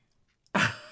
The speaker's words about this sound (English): You can hear the ladies coughing.